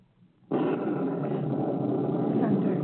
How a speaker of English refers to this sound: Thunder. It's only thunder.